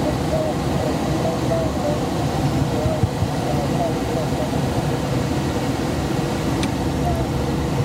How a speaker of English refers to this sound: Is that the air brakes coming on